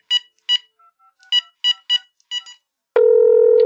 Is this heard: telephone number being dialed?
yes